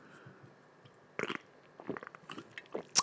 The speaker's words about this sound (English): I have an orange 3D energy drink today. Normally I go for the blue. I need to slurp on this for you because I know that you enjoy the sound of the slurp.